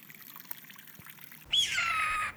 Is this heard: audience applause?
no